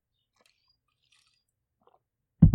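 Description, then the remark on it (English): Near silence with a few faint ticks, then a short, loud sip from a drink taken on the microphone right at the end, wet and abrupt. “I hear you taking a sip on the microphone after that.”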